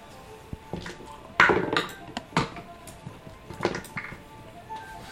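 Dice rolled for an initiative roll clatter across a hard tabletop in a quick scatter of sharp clicks and knocks, with a louder tumble partway through before the rattling settles into a few lighter taps.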